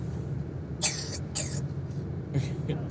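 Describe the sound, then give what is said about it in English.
A child coughs a few times in short, harsh bursts over a steady low rumble of background traffic. “It's gonna contain some kids coughing, some kids talking, some background traffic noise, all kind of stuff.”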